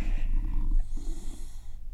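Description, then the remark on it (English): An old male dog sleeps, breathing heavily and snoring, with low rumbling snorts and two slow breath cycles over a faint background hum. “The dog is really having a great sleep.”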